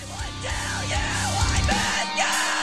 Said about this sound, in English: Yeah, she's good, definitely using what seems like a fry scream to me.